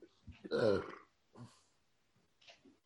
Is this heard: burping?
yes